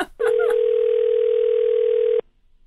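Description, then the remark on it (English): A telephone line rings once as Ira Glass calls up a listener: a steady, mid-pitched electronic tone holds for about two seconds and then cuts off, preceded by a few brief faint sounds. “He, like, called up a listener who didn't pledge or something, and he just embarrassed him on his show.”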